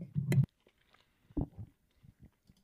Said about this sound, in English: Sorry, I was chewing.